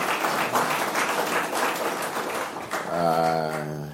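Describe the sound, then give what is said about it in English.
A crowd gives a round of applause for a welcomed mother, with dense, overlapping claps, fairly loud; near the end a voice rises with a sustained tone over the fading clapping. “Just a round of applause for her.”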